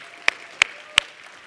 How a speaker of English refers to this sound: At New Life Students, one of the things we do is we welcome all of our first-time guests with a round of applause. So I'd like to do that for you as well today. Can we welcome our first-time guests? Yeah!